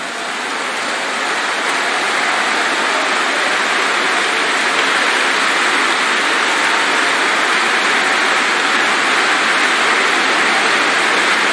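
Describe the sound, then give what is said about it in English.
An audience claps their hands in a dense, continuous roar of applause, individual claps blurring into a steady, loud wash that holds evenly throughout with no voices. “He made your hands to clap.”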